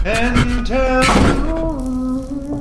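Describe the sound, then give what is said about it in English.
A door to a small laundry room slams shut with a single loud thud partway through, while raised, urgent voices shout before and after the impact. “There's a door to your left! Through the door! Shut the door! Shut the door!”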